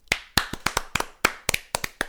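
Hands clapping close by, about a dozen sharp, bright claps in a quick, slightly uneven rhythm over two seconds, with no voices.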